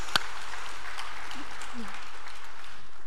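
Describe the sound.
An audience claps in a steady, dense wash of applause that fills the whole stretch, with one sharp louder clap near the start and a faint murmur of voices underneath.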